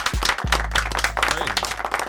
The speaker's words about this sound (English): Clap it up for that, like, literally.